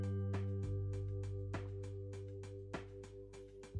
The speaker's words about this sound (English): Ah, the dulcet tones, the great beats provided to me by Anchor. So I have a variety of different background tracks I can pick, but I like this one the best.